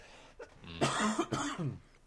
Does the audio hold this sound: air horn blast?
no